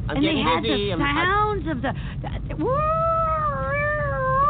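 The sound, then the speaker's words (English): A person with their head out of a window vocally imitates an ambulance siren, starting with wavering, warbling pitch sweeps and then holding a long, loud rising-and-falling wail, with low rumbling engine-like noise underneath. “I get my head out the window and I'm making ambulance sound because you want me to go faster.”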